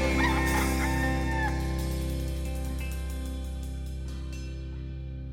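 A rooster crows once near the start, loud, its call rising and trailing off over a steady low droning hum that slowly fades. No one speaks.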